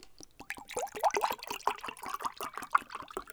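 Lychee-flavoured iced tea being poured, a steady trickling stream with gurgling, bubbly bursts lasting a few seconds, fairly quiet.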